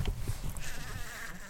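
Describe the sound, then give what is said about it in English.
A bee buzzes steadily inside a small pot with a grid at the bottom, some of its legs poking through, ready for a tarsi clipping with nail scissors. Its thin, wavering drone rises and dips in pitch, after a few soft low thumps at the start. “one of the bees is in the bottom of this little pot with a kind of grid at the bottom with some of its legs poking out, which I think means he's now ready to take the tarsi clipping.”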